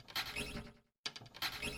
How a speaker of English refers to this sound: I can't afford no air conditioning, so I just open up some window.